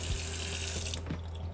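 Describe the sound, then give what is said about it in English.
Tap water runs steadily into a sink while dishes are being washed, a broad hissing rush that cuts off abruptly partway through, leaving a low hum and faint clinks behind. “Excuse me while that water runs in the background. I'm over here washing dishes, you know, doing wifely duties without even being a wife.”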